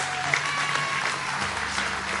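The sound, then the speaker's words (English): A church audience claps together for Jesus after a prayer in a sustained burst of applause, a dense, steady patter of many hands for a couple of seconds. “Can we get a hand clap for Jesus?”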